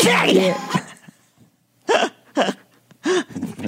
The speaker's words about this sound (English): That's …'s sneeze from last week.